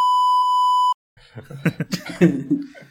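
A single loud, steady censor bleep, bleeping out a word, holds for about a second, cuts off abruptly, and after a brief pause gives way to voices chatting and laughing.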